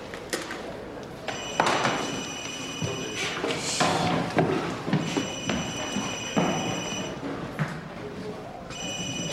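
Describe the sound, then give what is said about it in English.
A telephone taped to the underside of a chair rings in long electronic bursts separated by short pauses, moderately loud over a busy, noisy background with occasional clatter. “Officer Smith follows the ringing sound and discovers the phone taped to the underside of a chair, echoing Augusta's monologue about a person being cocky because that is one of the worst places I've ever fucking seen to hide something.”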